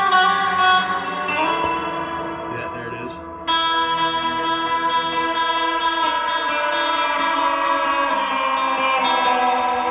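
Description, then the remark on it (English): A sustained, reverb-drenched tone with many stacked harmonics and a low sub-octave layer underneath, swelling steadily for about ten seconds with a brief dip in level partway through. “How about we throw in a sub octave? Hear hear that down on the bottom end on the reverb.”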